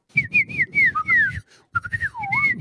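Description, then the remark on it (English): A person whistles an imitation of bush birds, a string of bright, warbling high notes that swoop up and down, broken by a brief pause before more trilling phrases resume. “I can do bush tree birds, right?”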